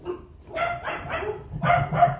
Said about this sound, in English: Could you hear my dogs? Because there were dogs running around.